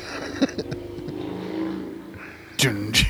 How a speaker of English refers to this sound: Yeah, there's a motorcycle driving by.